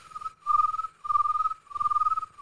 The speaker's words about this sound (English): So now the sun has gone down. The moon has come up. We got our crickets.